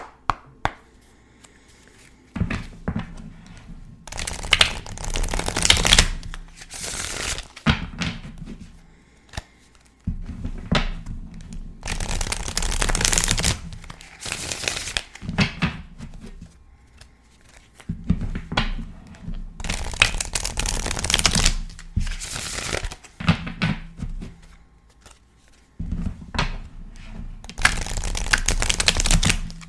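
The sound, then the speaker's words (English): A deck of tarot cards is shuffled in repeated bursts of riffling and slapping, with short pauses between each round of shuffling and no one talking. “All right, now they're all shuffled.”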